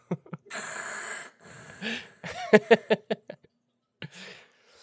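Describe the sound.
A voice imitates heavy mechanical respirator breathing like Darth Vader, a long raspy hiss with a rasping exhale, followed by a quick run of snorting, laugh-like bursts and a final short breath, fairly loud.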